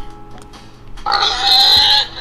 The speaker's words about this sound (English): Pig. Okay, it's pig.